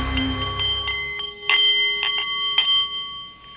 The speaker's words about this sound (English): The Nepalese meditation bowl is chiming, and that means it is time for The Art of the CEO